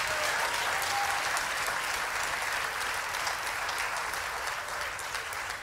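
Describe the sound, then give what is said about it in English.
A church audience claps their hands unto the Lord in sustained, dense applause, many overlapping claps forming a steady, loud wash of sound with a faint tonal hum beneath, tapering only slightly toward the end. “If you receive that, go ahead and clap your hands unto the Lord.”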